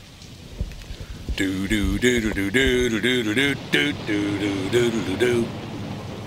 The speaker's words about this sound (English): Oh, I heard the storm. Must be ….